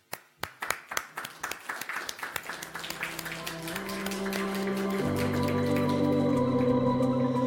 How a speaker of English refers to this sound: I don't know, protocol is usually that when a speaker is done with their speech, that it's the audience that claps. But it's me that would like to clap in gratitude for all of you that come today. Thank you very much.